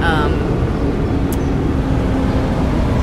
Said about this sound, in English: There's a truck.